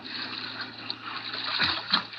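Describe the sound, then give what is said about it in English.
In the radio drama Dangerous Assignment, water sloshes and splashes steadily beside a boat as someone swims over to it, with a couple of sharper splashes near the end. “Here I am with the boat. Swim over this way.”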